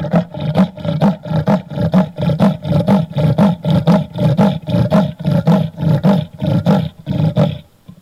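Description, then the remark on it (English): A leopard's rasping roar call: a long, steady series of harsh, grunting strokes, each in-and-out breath like a rough saw cutting wood, loud with no other sounds. “So yeah, most guides or most people would say to you that it resembles somebody sawing with an old or rusty saw, sawing a piece of wood.”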